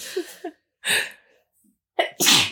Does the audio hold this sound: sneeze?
yes